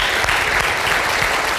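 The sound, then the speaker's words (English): A crowd applauds the sound crew steadily, a dense, even wash of many hands clapping at once with no pauses, loud and sustained for the whole moment with no voices standing out. “If you would do me a favor and just look right to the back over there, and let's give our sound people a round of applause, shall we?”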